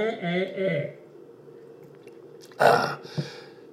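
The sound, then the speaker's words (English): A brief voice sounds at the start, then after a quiet pause comes a single short slurping sip of Dr. Pepper, followed by a faint swallow or click. “Oh, let's have a little sip of Dr. Pepper here.”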